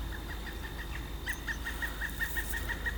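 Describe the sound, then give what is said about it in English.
A pileated woodpecker, a huge bird almost as big as a hawk, calling a long, evenly spaced series of sharp notes that grow louder partway through, in an oak woodland on the grounds of a Catholic abbey, heard over a steady low rumble of outdoor background noise. “Wow, just saw a pileated woodpecker. Wonder if you can hear that.”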